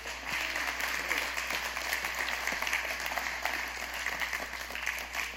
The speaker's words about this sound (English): Give them a hand clap.